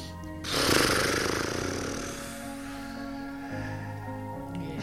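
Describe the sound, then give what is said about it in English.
A person blows a loud, fluttering horse-breath exhale through loose lips as part of a guided breathing exercise, a rapid buzzing trill lasting about two seconds, then fading, with a steady droning musical tone underneath throughout. “Maybe horse breathe out.”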